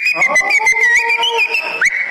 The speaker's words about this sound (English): Wait for the whistling!